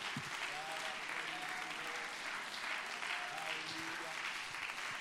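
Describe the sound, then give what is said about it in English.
An audience at a church service claps hands in praise to the Lord, a sustained wash of dense applause, with scattered voices calling out beneath it. “Give the Lord a great hand clap of praise and lift your voice with that hand clap.”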